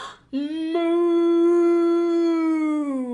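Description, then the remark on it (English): A single loud, drawn-out moo imitated by a human voice as people pretend to be cows and moo as loud as they can after a count of three, a steady low-pitched tone held for nearly three seconds before trailing off at the end. “let's all pretend to be cows. We're going to suck in all our air and then moo as loud as we can 3 times.”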